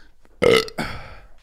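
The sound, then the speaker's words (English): A loud burp erupts with a sudden start, followed by a second rougher, raspy burst that trails off. No one speaks. “Well, you did grab my leg, but I did the burp defense.”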